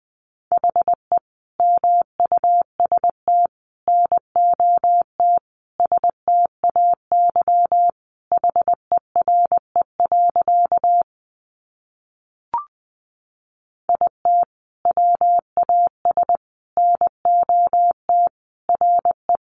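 A single steady mid-pitched tone keyed on and off in brisk dots and dashes, Morse code at about 20 words per minute, with a short pause and a faint click partway through.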